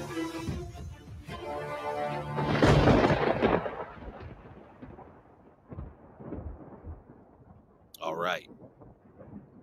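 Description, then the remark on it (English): A loud clap of thunder swells within the first few seconds, then rolls off into a long, fading low rumble, with a brief sharp swish near the end. “I love that. I love the thunder.”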